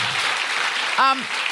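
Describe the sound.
Steady crowd applause, a dense hiss of many hands clapping throughout, with a brief voiced shout rising over it near the end.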